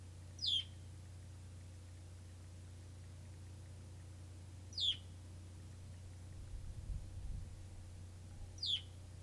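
A bird chirps three times at steady intervals, each call a short, high, downward-sweeping note, clear over a constant low hum of background noise.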